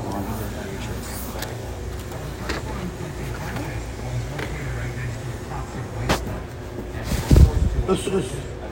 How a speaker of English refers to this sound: why did they leave the car running though? Car's just chilling there. Lights on everywhere.